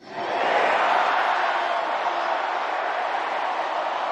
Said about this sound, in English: Surrounded by all his players, he exhorted the crowd of 50,000 people to shout those five words.